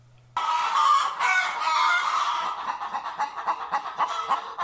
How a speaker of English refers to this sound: It's a chicken. Yeah, that's what I'm talking about. And it's not just one. That's a cock. There it is. And another. He's got bloody chickens.